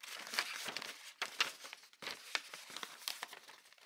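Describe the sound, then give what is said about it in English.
Soft crinkling and rustling of a crumpled ball of wrapping paper and torn tape, a steady run of crackly bursts that swell and fade over a few seconds, with no voices. “A rustle.”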